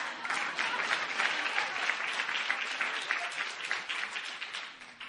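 An audience claps steadily for about five seconds as a clap offering for the speaker's mother, a dense wash of many hands at an even, fairly strong level that tapers slightly toward the end, with no speech over it.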